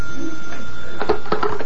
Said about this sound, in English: I telephoned it into the criminal records office and started for my office at New Scotland Yard. The telephone was ringing as I came in.